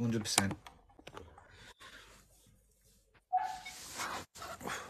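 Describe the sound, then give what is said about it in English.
A pet dog gives a short, sharp bark near the start, followed by scattered clicks and muffled voices in the background. “My dog keeps barking, so I've moved away.”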